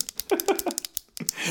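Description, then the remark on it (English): Rapid, irregular pen clicking: a dozen or so sharp mechanical clicks in quick succession, fairly quiet, ending in a soft rustling hiss. “It's a pen. Clicking. They're clicking.”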